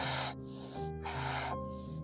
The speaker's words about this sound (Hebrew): ועברנו לקצב הבינוני של נשימות.